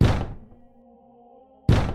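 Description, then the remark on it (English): A heavy door is struck twice with a ram by people trying to break it down. Each blow is a loud, deep, booming thud, spaced under two seconds apart, with a low resonant ring hanging in the quiet between them. “His monstrous ritual nears the time of offering. Ram it!”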